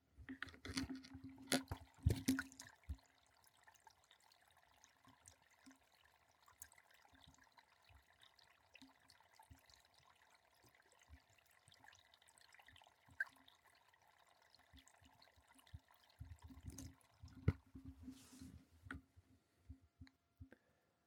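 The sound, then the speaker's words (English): Water runs and trickles steadily for about twenty seconds, with louder splashing and clinking bursts at the start and near the end, at moderate volume. “Mostly water, mostly just simple water.”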